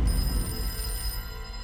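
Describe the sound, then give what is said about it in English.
A telephone rings for a second time, at 10:41 a.m., with a steady, high-pitched trill that cuts off after about a second, heard over a low background rumble with no one talking. “But at 10:41 a.m., the phone rang for a second time.”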